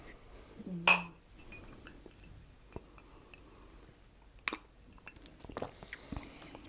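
A single bright clink of glasses touching in a toast in California rings out near the start, followed by quiet scattered taps and small handling sounds, with no one speaking.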